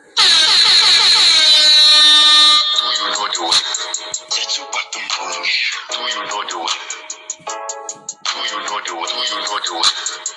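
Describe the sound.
A loud air horn blares for about two and a half seconds with a sweeping, wavering tone, then gives way to dense, rhythmic music with clipped stabs and voices mixed in.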